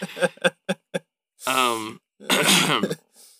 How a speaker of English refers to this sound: All the coughs jarred my brain loose.